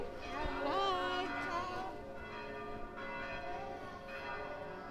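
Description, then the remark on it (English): Church bells in Rome peal continuously at noon, many overlapping tones ringing together in a dense, steady wash that stays fairly loud throughout, with faint crowd murmur beneath. “So, want to talk about these bells? Is it noon? A thousand bells at noon, as they say.”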